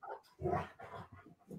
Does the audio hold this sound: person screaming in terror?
no